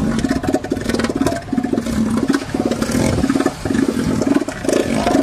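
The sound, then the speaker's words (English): A male elephant seal bellows, a loud, throaty, pulsing rumble that sounds almost like an idling engine, coming in rapid rhythmic bursts for several seconds with brief pauses between. “That was a male elephant seal.”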